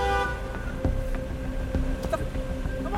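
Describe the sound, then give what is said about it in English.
A car that has pulled up very close behind another car on a curvy street revs its engine loud and close for the full three seconds, a steady droning hum with a few brief clicks and knocks, and no voices. “I was just driving, and this car pulled up very close to me and was revving its engine.”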